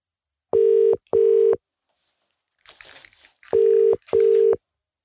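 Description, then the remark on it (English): An outgoing phone call rings in two loud double-rings, each pair of short buzzy tones separated by a pause with a brief soft rustle in between; no one speaks. “I think I'm going to do my first phone call now.”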